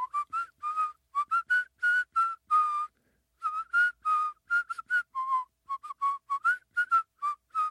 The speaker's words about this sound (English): That's inhaling whistling.